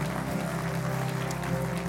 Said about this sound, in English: Yeah, let's clap our hands and welcome them to the family of God.